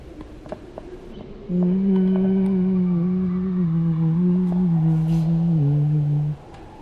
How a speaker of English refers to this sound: Are you making the tapes? I'm making it right now, as we speak. Give me a little hum. I just woke up. Give them a little early morning sleep tape humming.